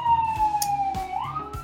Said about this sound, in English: Before we could continue with the interview, an ambulance drove past my house. So sorry about this, I'm near a hospital.